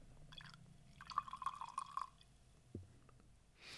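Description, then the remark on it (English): Bad Larry from a twist-cap bottle is poured into a glass, a short gurgling, bubbling stream for about a second with a faintly rising pitch, followed by a soft knock and quiet rustling. “Pour myself some.”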